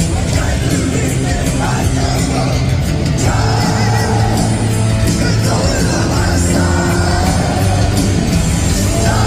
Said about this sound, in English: Now, I can't tell because the crowd is so loud. Right. But it sounds like they're, like, dead on it. Sounds great.